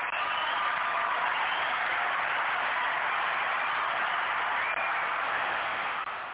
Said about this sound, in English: They clap longer every week. Every week they love us more.